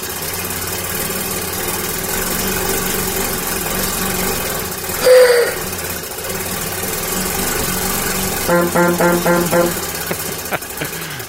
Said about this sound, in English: It's basically a machine with a crank. It's a giant wooden box with gears and cranks. And you turn the lever, you crank the lever, and it just makes this awesome sound. I'll give you an example.